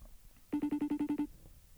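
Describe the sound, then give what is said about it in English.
An outgoing FaceTime audio call's ringing tone: a short burst of about nine rapid, evenly spaced electronic pulses at a steady mid pitch, heard clearly on its own with no talking. “Be surprised if she answers, honestly.”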